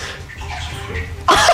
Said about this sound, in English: I like just the silence with water splashing.